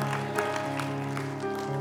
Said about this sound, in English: Somebody give him a hand clap of praise today.